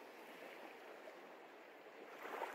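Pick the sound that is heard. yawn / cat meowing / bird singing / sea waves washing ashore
sea waves washing ashore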